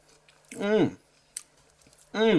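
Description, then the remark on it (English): Crunchy chewing of pickled onion Monster Munch corn snacks, with a few sharp crackly bites between two drawn-out, appreciative hummed vocal sounds from the same person. “Just having another one.”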